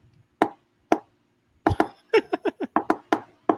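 A quick series of hollow plastic knocks as snakes' heads strike against tubs: two isolated taps, then a rapid irregular burst of about ten sharp, fairly loud thuds with no voices.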